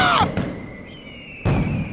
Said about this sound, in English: Yeah, there go the fireworks. Oh, yeah. Yeah, fireworks. Woo! Fireworks! America!